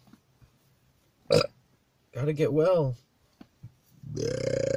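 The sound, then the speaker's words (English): A person speaks briefly while loud, croaky involuntary burps break through, the last one a long, drawn-out belch rumbling to the end. “Gotta get back to the times when I controlled when I was burping. And it wasn't just air trying to escape my throat.”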